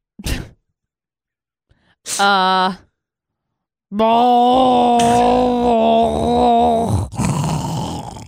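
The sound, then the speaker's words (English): A person imitates snoring with their voice: a brief snort, a short groaning burst, then a long, loud, rattling drone that breaks into a noisy, gurgling exhale at the end. “It's a mix of a train rolling on ice, coughing, gurgling, mouthwash.”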